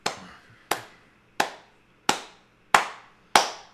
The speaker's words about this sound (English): Slow clap, yay!